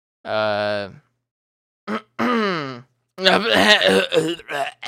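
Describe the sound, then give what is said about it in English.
A man clears his throat with a few rough, voiced grumbles, fairly loud, separated by short pauses, then breaks into a quick burst of muffled vocalizing. “I had to clear my throat, my bad.”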